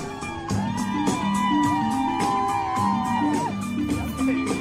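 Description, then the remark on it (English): A parade crowd in the streets of the French Quarter cheers, whoops and dances along as a group in Bollywood-style costumes passes, over lively band music with a steady thumping drumbeat and a wavering melody line under the constant roar of voices. “the crowd is going wild and dancing right along with them.”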